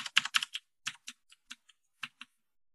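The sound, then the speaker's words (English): Clicky keyboard keys being typed in an irregular burst of sharp clicks, a quick flurry at first, then slower scattered taps with pauses between them. “It's a clicky keyboard.”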